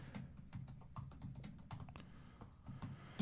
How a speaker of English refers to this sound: I love keyboard clatter on a podcast. It's really good. It kind of adds something, doesn't it?